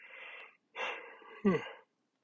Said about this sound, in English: Big yawn. Big yawn, guys, over here.